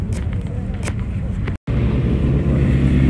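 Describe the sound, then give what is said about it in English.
Small moped scooter engines rumble steadily, a continuous buzzing drone with a brief cut midway, as the scooters arrive and pass, one with a long aerial, with faint voices in the background. “And here we are, a little moped, scooters have just turned up.”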